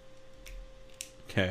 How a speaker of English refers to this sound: No one was clicking their pen. I was flipping the cap on my thumb drive, but I wasn't flipping the pen.